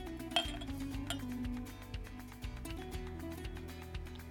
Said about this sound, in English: This is 86 proof, 43% alcohol by volume. And let me pour some in my snifter here. Open that up.